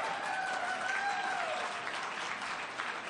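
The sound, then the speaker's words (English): An audience at a political speech applauds and cheers the investment of more than $12 million in historic parks and a new Park Ranger program, a dense, steady wash of clapping that stays loud throughout, with a brief whistle gliding through the noise early on. No one speaks. “You can give a cheer to that.”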